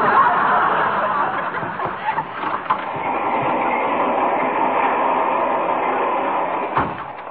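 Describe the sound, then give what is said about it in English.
A steady, loud rumble of a fast passenger train rolling along the rails, continuous throughout with occasional clacks and jolts and a sharper knock near the end. “Besides, I wouldn't want a barber fooling around with me with a razor on a train this fast.”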